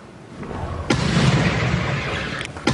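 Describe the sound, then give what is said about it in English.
A homemade hail cannon, built from sheet metal by a vineyard owner in Hamilton, fires with a loud, sharp boom, followed by a sustained roaring rumble, then a second blast begins near the end; no voices are heard. “But now we know they are apparently the result of a homemade hail cannon.”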